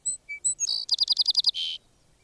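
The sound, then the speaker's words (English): A song sparrow sings one bright song, starting with a few clear introductory notes, then a rapid trill of about seven buzzy notes, ending in a brief buzz. Clear, no talking. “Thus does this little brown bird salute the spring with all the enthusiasm of the larger, better-seen birds.”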